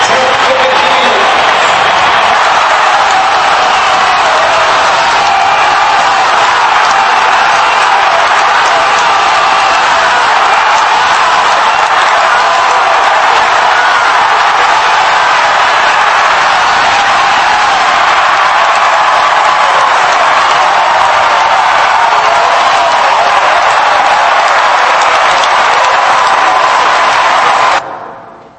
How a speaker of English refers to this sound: So that's a wonderful scene, isn't it, of being there in the crowd and that huge crowd of people cheering on Mo Farah.